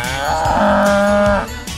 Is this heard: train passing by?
no